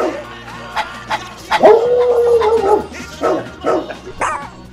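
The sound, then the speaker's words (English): A dog barks in a series of short, loud bursts at an uneven rhythm, with a drawn-out howling whine in the middle, prominent with no talking. “Dog Talk with … on News Talk 610 CKTB. Woof, woof, woof. Woof. Woof, woof.”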